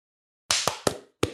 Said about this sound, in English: All right. Are we all at time.is? Yes. All right. Let's do a clap at, let's do it at 13 seconds.